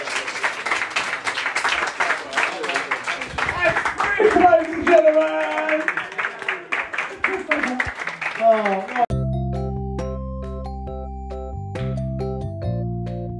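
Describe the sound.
Dense applause with scattered voices from an audience of about 20 to 25 people at the end of a small live gig rises and fades over about nine seconds, then gives way abruptly to steady electronic music with sustained, stepping synth tones.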